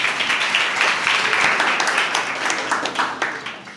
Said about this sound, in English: All right. Thank you very much. Let's give them a round of applause, please.